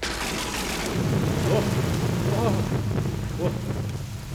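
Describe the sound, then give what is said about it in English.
Steady, heavy rain hisses loudly throughout, with a deep rolling thunder rumble sustained underneath, continuous with no pauses, on a long, cold, wet, windy night. “It could be raining.”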